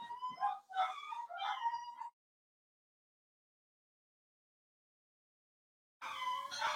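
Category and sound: animal, dogs barking and howling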